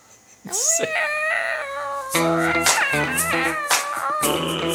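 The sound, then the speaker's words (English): Cats in heat yowling mating calls outside a window in Taipei, in long, wavering cries, several overlapping calls rising and falling, fairly loud and continuous, with voices talking over them. “can everybody hear the cats outside of my window?”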